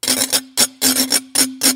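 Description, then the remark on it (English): A metal whisk, being demonstrated, scrapes rapidly across a glass washboard in about seven bright, raspy strokes, some paired, played in a steady rhythm over a faint ringing hum, with no voices. “And the glass one with the whisk.”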